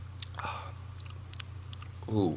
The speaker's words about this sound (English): Fresh out of the decanter, ladies and gentlemen. Whoa. Take a nice whiff. Hints of lavender. It's a very strong alcohol smell. And I'm making this up as I go. Do you take the first sip?